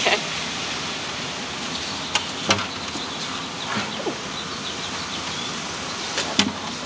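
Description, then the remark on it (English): Steady, even hiss of rain falling outside a pavilion, with a few sharp drips or taps standing out at irregular moments. No one speaks. “We're in a pavilion. It is raining, so...”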